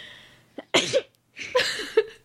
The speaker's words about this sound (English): And finally she sneezed. You told us you were gonna sneeze like 3 minutes ago.